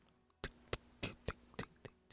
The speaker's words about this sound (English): John hears a sudden sound. Ticking.